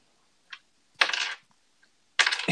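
Two bursts of hard clattering as two players roll dice across a table, each burst lasting about half a second, with a few faint clicks in between. No voices.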